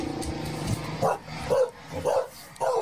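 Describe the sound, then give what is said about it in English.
A man imitates a dog, letting out about four short, loud barks at a steady half-second rhythm after a brief low, droning vocal sound, in a documentary from the channel Soft White Underbelly. “He just barks.”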